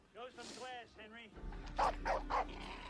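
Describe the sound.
A dog lets out a few high, whiny yips, then gives three quick, sharp barks close by over a low background rumble, with a voice also audible.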